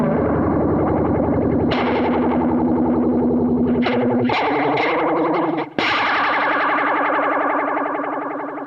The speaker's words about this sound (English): About that level, I need distortion to do it, but that's the kind of flange we're getting to now, is more like serious flangey flange. That is some serious flange.